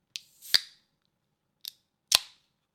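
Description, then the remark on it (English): A can of Waikato Draft beer from New Zealand being opened: a brief hiss, then a sharp metallic crack of the tab, a small tick, and another loud snap trailing into a short fizz. No voices. “It's such a good sound opening a can.”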